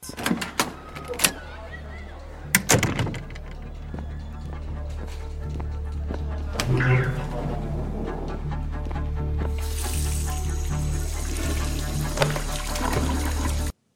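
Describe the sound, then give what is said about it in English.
Locker room ambience: a few sharp clunks and a big push door into the locker room thumping open early on, then a steady murmuring hum with faint indistinct voices, joined later by a bright hiss like running water. “Yeah, so it's sort of was picturing like they open the door, walk in, and then they got the big door you push over and into the locker room.”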